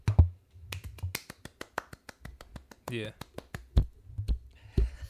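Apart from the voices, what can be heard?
hosts clapping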